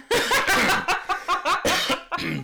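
A fairly loud run of about seven quick coughing bursts, voiced and slightly laugh-like, spilling one into the next over a couple of seconds with no speech.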